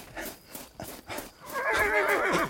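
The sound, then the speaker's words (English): A few sharp hoof clops on a hard surface as a rider rushes a horse through an opened gate, followed by a loud horse whinny with a wavering, trembling pitch that fills the last second. “she had already tied her horse to the banister.”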